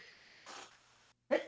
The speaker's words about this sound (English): He just sneezed. Sorry. That's okay. Was that existential there? That existential sneeze?